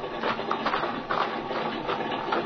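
A steady, rough mechanical drone of an airplane engine idling in a field, with a faint regular chugging pulse running through it and no voices.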